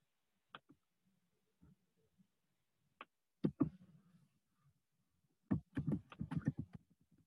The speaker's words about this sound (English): I hear someone typing away.